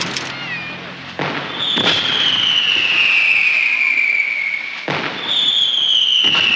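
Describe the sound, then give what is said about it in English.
Fireworks going off for the 4th of July somewhere in America: several sharp, booming bursts a second or so apart, joined by long, shrill whistles that slowly fall in pitch as rockets streak upward, loud. “This July 4th, millions of Americans will blast fireworks into the air and celebrate the 4th of July.”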